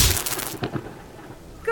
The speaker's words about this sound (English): So I know that loud thunder is just lightning passing through the air. And lightning is electric charges in the clouds.